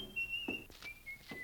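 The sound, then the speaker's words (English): A man whistles a short tune, a thin high melody stepping between a few notes, with some soft thuds and rustling in the background; he has just slammed the front door. “He slammed the front door, and he was whistling.”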